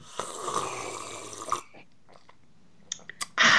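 A long, noisy slurp of tea, then a few small clicks and a brief louder rush of breath at the end. No one speaks.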